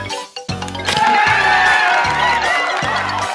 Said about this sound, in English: Spooky applause this time. I've had that there since the last time you were on, so thank you for coming back.